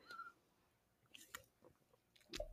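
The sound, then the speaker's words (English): A few quiet mouth sounds of someone sipping a beer, soft slurps and swallows with brief clicks, ending in a slightly louder gulp. No one speaks. “Like, I'm going to take a sip of my beer.”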